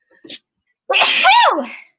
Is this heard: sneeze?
yes